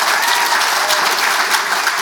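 Sustained, dense applause from a sizable crowd fills the entire stretch, a steady loud clatter of many hands clapping with no pauses and no voices standing out above it.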